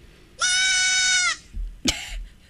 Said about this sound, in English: It's got to be a goat. Yep. Yeah. It's a baby goat.